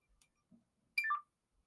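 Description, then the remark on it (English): A phone gives one quick electronic beep, a bright tone sliding downward over about a quarter second, fairly loud against an otherwise quiet background. “I could have sworn my phone was on Do Not Disturb.”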